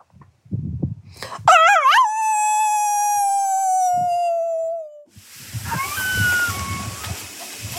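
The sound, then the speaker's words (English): Author Terry Tempest Williams gives one long, loud howl that swoops up and then slowly slides down, howling along with coyotes. Fainter, higher coyote howls follow over a rustling, noisy background. “And the clip you just heard, the one of Terry howling with coyotes, it is almost unnerving.”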